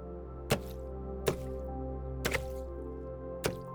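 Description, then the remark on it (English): An axe strikes ice over water about five times at an uneven pace, including a quick double hit, each a sharp, cracking impact over a steady humming tonal backdrop. “Take the axe and break that ice.”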